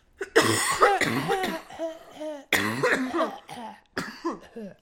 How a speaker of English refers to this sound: I'm gonna cough. Hang on.